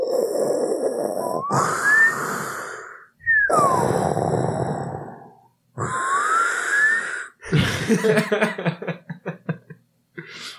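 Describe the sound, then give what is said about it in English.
A person imitates Darth Vader's heavy, mechanical respirator breathing: three long, raspy, hissing breaths, then a choppier run of wheezing, sputtering puffs trailing off. “Being like an asshole, like looming behind you, like the Darth Vader breathing sound.”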